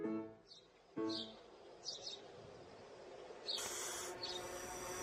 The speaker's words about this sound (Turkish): Bir süre sonra kuş ötüşmeleriyle irkilmiş.